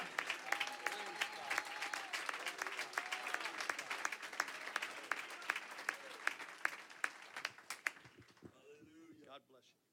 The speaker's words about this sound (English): And I wonder if we could come together clapping and lifting our hands. And God, we want you to move in this house. If you've come with expectation, put your hands together right now.